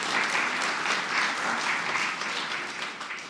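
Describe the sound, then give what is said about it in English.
A church audience claps steadily for two great-grandmothers for a few seconds, a dense, even wash of many hands with no voices on top, easing off slightly toward the end. “Give them a clap.”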